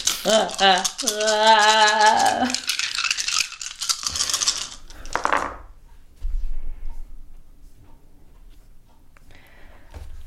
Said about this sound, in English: Stop staring at your game science gem dice and just roll them.